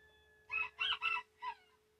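A rooster crows once, a loud cock-a-doodle-doo in four quick bursts with the last note trailing off, over a faint steady hum and no talking.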